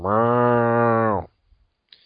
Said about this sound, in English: So fans leaving early, entire offense, Matt Miazga, a gaggle, a large herd of cows for you tonight.